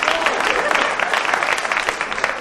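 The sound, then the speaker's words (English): A crowd claps steadily, dense overlapping hand claps forming a full, even wash of applause that holds at a moderate level throughout. “I don't care if you don't clap.”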